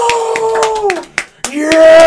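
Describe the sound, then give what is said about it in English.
An in-studio round of applause: a few scattered, sharp hand claps at an uneven pace ring out over a sustained whooping cheer from a voice. The cheer dips briefly and then rises again as the clapping continues. “It deserves a huge, we're going to get an in-studio round of applause going.”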